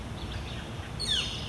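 A bird gives a quick, sharp downward chirp outdoors on a morning while fishing, preceded by a few faint tweets, all over a steady low background rumble with no talking.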